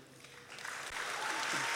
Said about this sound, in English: These guys are lovely, they'll clap at anything. I told you they'd be fucking sound.